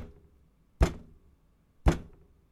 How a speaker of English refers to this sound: But Zadok, you know, he knocks. Nobody's answering for a little while.